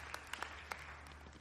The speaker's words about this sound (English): Can we give our gentlemen a round of applause, please? Thank you, boys.